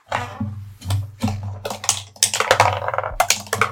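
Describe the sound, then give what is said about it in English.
Dice clatter and rattle, a quick irregular run of sharp clicks and knocks tumbling over a few seconds with no voices. “I love this dice sound.”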